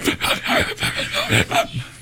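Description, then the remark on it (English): A person imitates Macho Man's deep, heavy inhaling breaths from a video, a rapid series of about five or six loud, raspy gasps in a quick rhythm, with no speech. “Where they just edit out all of his words except for his deep breathing. Every time he inhales, just...”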